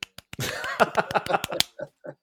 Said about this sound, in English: Golf clap.